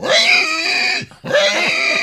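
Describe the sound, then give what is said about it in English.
A person mimics a pig with two loud, nasal squealing oinks, separated by a brief pause, each with a harsh, grunting, vibrating tone. “And then my tribute to my home state of Missouri.”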